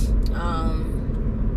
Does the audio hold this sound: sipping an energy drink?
no